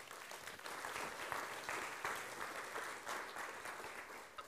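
An audience applauds steadily to welcome a man called up to the front, a dense wash of many hands clapping at once that holds at an even level for several seconds, sounding like a fairly large crowd.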